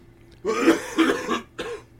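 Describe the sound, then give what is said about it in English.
A loud fit of coughing: two rough, throaty coughs run together, followed after a short pause by a third, briefer cough, with no talking. “Yeah, I need to figure out how to make cough buttons.”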